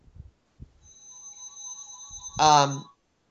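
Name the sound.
phone ringtone ringing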